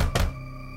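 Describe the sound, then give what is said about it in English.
A fist thuds heavily against a locked front door whose knob will not turn, two quick dull impacts as someone frantically bangs on it, followed by a steady low droning hum that lingers after the banging stops. “All I could do was frantically and fruitlessly bang on my own door as if I was the unwelcome guest.”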